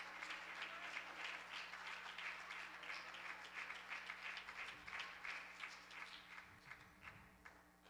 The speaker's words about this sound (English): Clap your hands and love the Lord one more time, would you? Come on, would you just give Him a shout of praise right now?